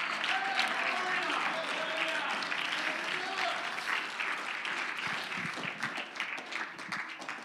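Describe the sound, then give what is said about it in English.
A standing audience claps their hands unto the Lord in dense, sustained applause that fills the room, with voices murmuring and calling out underneath before the clapping gradually thins toward the end. “Oh, stand to your feet and clap your hands unto the Lord, somebody.”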